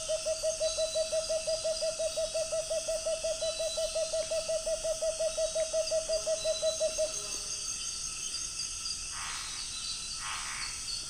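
A tawny-bellied screech owl in a tree overhead gives a long, steady trill of rapid, evenly spaced hoots for about seven seconds, clear, over a constant night chorus of insects and frogs.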